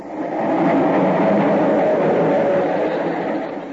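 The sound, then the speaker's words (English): A subway train rumbles steadily beneath, a loud continuous low roar with a faint rattling clatter that swells in and fades slightly at the end, with no voices. “The subway. It's right under us.”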